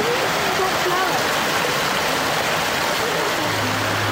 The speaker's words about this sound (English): You might be able to hear that in the Costa Rican area of the rainforest biome. There's this mini little waterfall, this little stream running through it all. Listen.